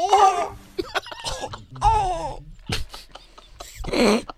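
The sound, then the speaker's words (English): A person imitates a quiet little whimper: a few short, wavering whines with breathy catches between them, ending in a rougher, breathy burst. “What a quiet little whimper.”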